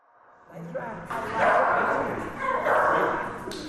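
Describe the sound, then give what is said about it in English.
Shelter dogs in the Canine Cellmates jail dogs program at Fulton County Jail, where inmates care for them, bark and yip in a dense, continuous, echoing clamor that swells louder after the first second, with indistinct voices blended into the noise. “For the six-year running, CCM has been supporting the program that gives inmates a purpose and gives shelter dogs a home.”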